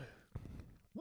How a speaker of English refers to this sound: What was that noise before? That was a hiccup. I'm sorry.